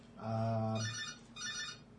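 A telephone rings with a loud electronic tone: a low sustained note followed by two bursts of higher warbling chimes, with no voices.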